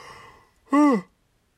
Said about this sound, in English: Excuse me, just yawned out of almost nowhere.